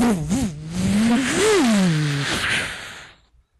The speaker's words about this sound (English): Clark speeds off on a motorcycle.